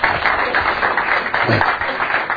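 An audience that includes criminal justice students breaks into a round of applause for a police chief, many hands clapping in a dense, steady wash that stays fairly loud and even for the whole couple of seconds.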